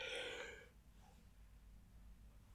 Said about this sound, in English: I both did a big yawn.